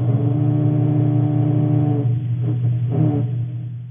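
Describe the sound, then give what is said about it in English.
A recording of a baby grey snapper fish larva making a growl: a low, steady growl with a buzzing harmonic tone holds for about two seconds, then breaks into a few rougher, pulsing bursts before fading. It is loud and has no talking over it. “And this is a growl.”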